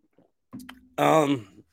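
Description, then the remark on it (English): A quick sip of water with a soft gulp and faint wet clicks, followed by a short voiced, satisfied exhale from the drinker. Fairly quiet, with no speech. “I got to take a sip of water real quick.”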